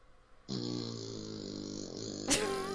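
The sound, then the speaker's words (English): A long, buzzy fart sound effect with a steady, wobbling low drone for about two seconds, finishing in a sudden sharper, squeaky burst. No one speaks. “That was a cheek wobbling one.”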